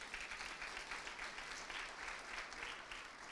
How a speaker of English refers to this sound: Give Clay a good round of applause here.